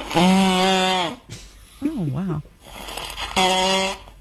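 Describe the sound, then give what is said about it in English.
A little kid snores loudly like a grown man with a deep, rumbling buzz, two long heavy snores separated by a shorter wobbling, gurgly breath, alone. “This is a little kid snoring like a grown man.”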